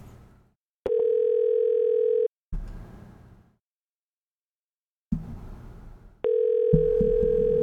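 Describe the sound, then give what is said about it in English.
A steady, unbroken telephone dial tone after the other party hangs up on a call hums for about a second and a half, gives way to bursts of rough handling noise and a silent gap, then returns, loud and constant, with no one speaking. “Why did you hang up on me?”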